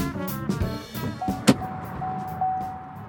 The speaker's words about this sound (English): I just opened and closed the door at a stoplight so that you'd get the sense we were just stepping into the car.